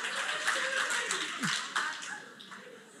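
A crowd claps steadily for a few seconds, a dense patter of many hands at moderate loudness, with scattered chuckles and murmurs mixed in before it starts to fade.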